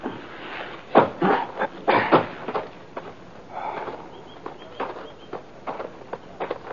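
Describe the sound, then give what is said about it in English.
Horses' hooves clip-clop at an uneven walking pace, a dozen or so soft thuds and knocks, with no voices over them. “We tethered our horses on a couple of spruce saplings and moved into the cave entrance.”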